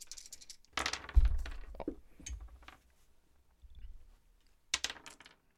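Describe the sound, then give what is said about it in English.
Several discipline dice for a tabletop game clatter and tumble across a hard tabletop in a couple of quick bursts, with sharp clicks and knocks settling after each throw, fairly loud with no talking. “Roll me some more discipline dice.”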